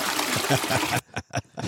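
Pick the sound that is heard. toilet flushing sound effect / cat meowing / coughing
toilet flushing sound effect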